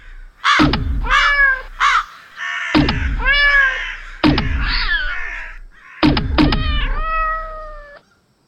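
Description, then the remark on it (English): Crows caw loudly in three rough bursts of harsh, overlapping calls over several seconds, with no talking. “The crows, they're retreating.”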